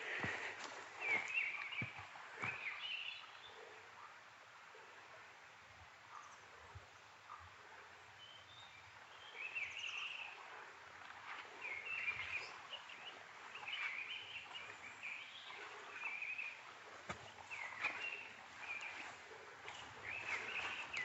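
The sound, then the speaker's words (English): A mistle thrush sings short, fluting phrases separated by pauses, fairly faint and repeating throughout, over soft rustling and occasional footstep-like crunches. Nobody speaks. “The trouble with missile thrush songs is that they have this sort of distant quality about them.”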